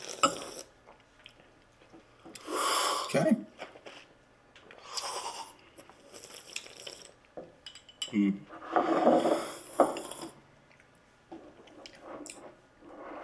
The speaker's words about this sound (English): Spoons at the ready. Is our timer ready? And go. We're going to take some, put it in our cup, give it some sips.